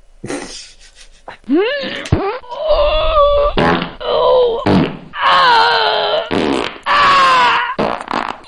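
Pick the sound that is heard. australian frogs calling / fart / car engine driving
fart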